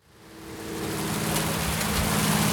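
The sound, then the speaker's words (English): Hail drums down outside a studio in a dense, steady clatter that swells up over the first second, then holds as a continuous hiss with a low hum beneath it. No one speaks. “It's hailing at the studio.”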